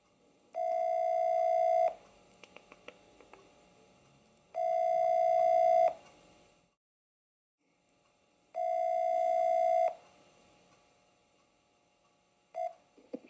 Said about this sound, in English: Okay, I'm just typing in the number if you're listening on the podcast here, so bear with me. If you can hear this ringing.